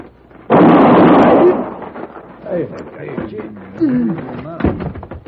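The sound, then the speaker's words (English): A single loud gunshot bursts out suddenly and booms for about a second before fading, after which voices begin talking. “And I'm going to kill you with this 1 bullet if you try to take his gun.”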